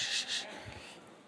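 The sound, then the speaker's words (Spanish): Papery rustling and brushing as thin Bible pages are flipped in church during a sermon, turning to chapter 14, two quick swishes up front then a softer shuffle, fairly quiet, with no one speaking. “Ese es el mejor sonido en la iglesia cuando se escuchan las hojas.”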